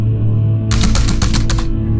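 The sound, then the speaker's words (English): A man rapidly typing on a keypad, a quick burst of about six or seven sharp clicks over a steady low hum, fairly loud, with no one speaking. “Viciously typing at his keypad.”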